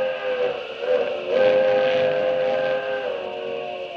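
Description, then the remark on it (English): A steam train's whistle sounds in one sustained, loud chord of steady tones, swelling and holding for about four seconds with a breathy hiss of steam beneath it; no one speaks. “He's waiting for the train.”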